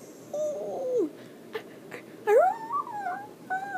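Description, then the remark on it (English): A person imitates a feeble, dying wolf howl: a few short, wavering whimpery cries that rise and sag in pitch, moderately quiet with brief gaps between them. “Imagine if, like, a wolf sounded like that. How awful would that be?”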